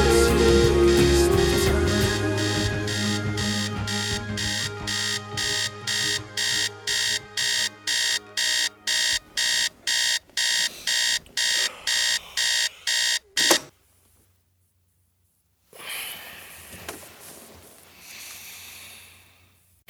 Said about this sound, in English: The music begins to fade down, as the jarring, aggressive sounds of an alarm clock invade and eventually dominate the sonic landscape.